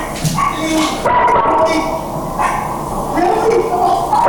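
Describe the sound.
A dog barks and yips repeatedly in short bursts, loud, over a noisy background of people shouting indistinctly, recorded in a cell phone video of a scene.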